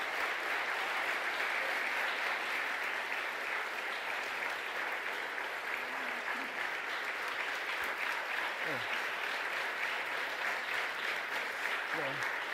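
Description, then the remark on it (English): Sustained audience applause as Slavoj Žižek is asked to the podium for his talk Why I'm Still a Communist, a dense steady wash of clapping that stays loud and even throughout, with a faint voice or two briefly surfacing beneath it. “Listen, don't applaud too much my old joke.”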